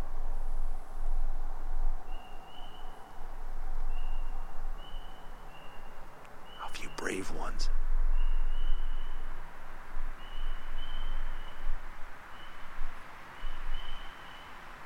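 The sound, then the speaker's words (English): Frogs sing at night in a steady chorus of repeated high, piping calls over a soft, constant background hum, with a brief spoken phrase breaking in around the middle. “And I thought we could do our deep breathing as the frogs sing.”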